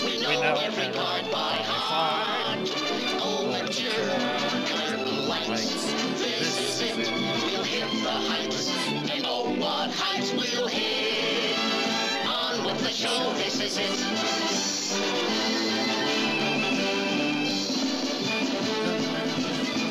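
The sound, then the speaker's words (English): A cartoon show's opening theme plays loud and continuous for the whole stretch, a busy, bright music track with no voices over it. “What I loved about that opening was the end where all of them are coming out and, you know, and they're walking, dancing across the stage, because I always like these big group things”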